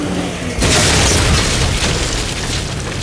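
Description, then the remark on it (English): A low steady rumble gives way after a moment to a sudden, loud blast of sticks of dynamite blowing a wooden door into a thousand pieces, bursting across the whole range and lingering as a roaring, crackling wash of debris noise. “The door was blown into 1,000 pieces.”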